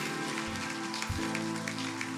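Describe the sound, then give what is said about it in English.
A church audience claps steadily in a round of applause for Pastor Corey's message, a dense crackle of many hands at an even, fairly loud level throughout, with no voices over it. “And hey, guys, can we give a round of applause to Pastor Corey for that amazing, amazing message?”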